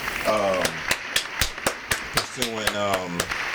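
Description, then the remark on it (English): A round of applause for the speaker's sister, who is now in college: steady, evenly spaced hand claps, about four per second, continuing throughout, with a voice speaking over the start and again near the end. “Actually, let me give her a round of applause because my sister is now in college.”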